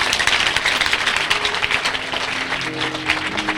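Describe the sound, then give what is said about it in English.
A crowd applauds steadily for several seconds, a dense, loud wash of many hands clapping with no break, while faint low sustained tones hum underneath toward the end. “Because you need to clap well because Tolu is watching us live.”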